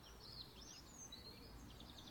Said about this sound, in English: Spring is sprung, and one of its telltale signs is the increase in birdsong.